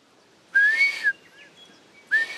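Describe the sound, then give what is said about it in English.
A person whistles two breathy, rising-then-steady notes imitating the call of a blue duck (whio), each about half a second long with a pause between, fairly loud against a quiet background. “So they just make a sort of neary whistle like that. That's a pretty poor imitation, but.”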